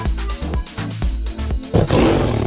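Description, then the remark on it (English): A tiger roars loudly, a deep rumbling growl with pulsing low harmonics that swells into a harsher, noisier snarl near the end. No one speaks. “Now, the correct answer was a tiger.”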